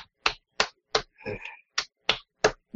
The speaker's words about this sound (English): All I'm hearing is a bunch of slapping sounds. Yeah, she's slapping my stomach. That sounds like two hands slapping.